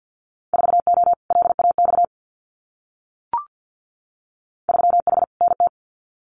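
Rapid Morse code at 50 words per minute, sending Winter Field Day exchanges: a steady mid-pitched tone keyed in quick dots and dashes. Two short bursts of characters are separated by a pause broken by a single soft pop.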